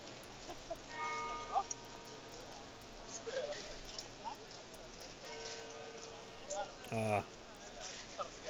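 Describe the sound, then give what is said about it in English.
Church bells in Belgium ring faintly under a constant wash of background noise, their sustained tones coming in two spells with a brief louder burst of clatter near the end. “I think you get some church bells in the background.”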